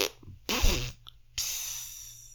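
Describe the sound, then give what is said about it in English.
A voice mimics farting with a wet, sputtering raspberry burst, then a short hiss and a second breathy blow, fairly loud against a faint steady hum. “that it would have like a symphony of fart.”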